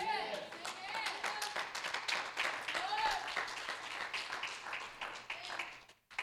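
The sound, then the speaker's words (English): Two sections of an audience clap steadily during a sermon, a dense patter of many hands with some cheering voices mixed in, holding fairly loud for several seconds before cutting off briefly near the end. “Why did these two sections clap and y'all didn't do nothing?”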